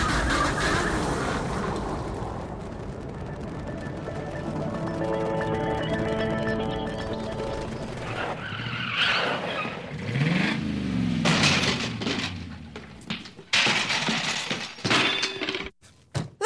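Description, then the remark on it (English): A jet boat's loud, droning engine revs with steady rising and falling tones, then gives way to a burst of clattering crashes and bangs near the end. “Okay, time to get either back on the jet boat, or do you want to walk?”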